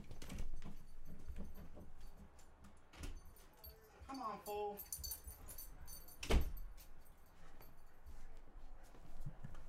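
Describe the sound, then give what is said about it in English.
Wheezy the dog scratches and rattles, digging at a door, then the door opens with a creak, a squeal and a sharp thump; a person mutters briefly over the handling noise. “Wheezy is digging at my door.”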